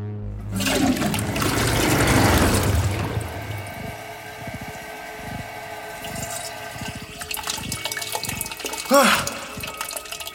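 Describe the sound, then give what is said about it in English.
A loud toilet flush roars, surging for a few seconds before draining into a gurgling trickle as the tank refills, with a brief rising whoosh near the end. “Let's get flushing.”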